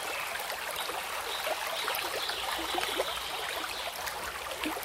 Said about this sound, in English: A lot of these soothing things are water. This one is a relaxing river. It doesn't sound like a very relaxing river.